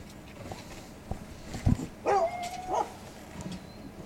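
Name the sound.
hunting dogs barking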